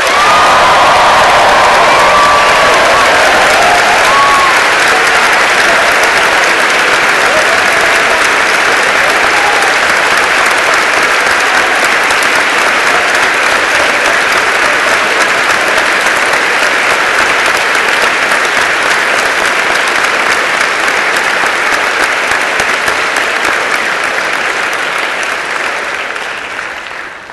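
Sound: warm round of applause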